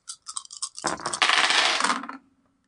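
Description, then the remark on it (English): Dice rolling as everyone at a game table rolls: a few light, scattered clicks, then a loud, dense rattle of hard dice clattering together for over a second before quickly settling. No voices are heard. “Everyone, roll me a clever.”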